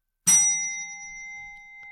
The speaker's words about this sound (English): Hear that? Uh-huh. Oh, of course you do. Yeah. I failed to mention we got a new bell. Mm-hmm. Chase, loyal, longtime, awesome listener, Chase in Virginia, sent us a new bell